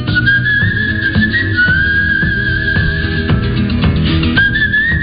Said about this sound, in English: Is that him whistling? That's him whistling.